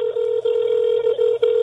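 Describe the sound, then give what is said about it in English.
A steady electronic telephone tone hums continuously as a call is placed, broken by a few brief dips, fairly loud, with no one speaking. “We're calling her whether she likes it or not.”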